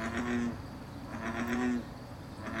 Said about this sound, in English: In her research at the University of Connecticut, she spent more than 3,000 hours recording bullfrogs in the wild. This is what a frog pond would normally sound like.